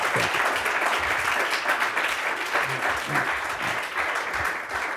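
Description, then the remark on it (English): Sustained applause from an audience, a dense wash of many hands clapping at a steady, fairly loud level throughout, with a faint murmur of voices underneath. “Well, why don't we clap as we do?”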